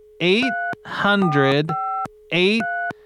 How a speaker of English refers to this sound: All right, just gonna dial that number.